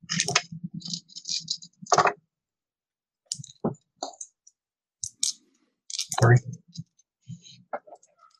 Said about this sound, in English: Okay, two successes plus your strength, plus one. So roll five dice. Difficulty six.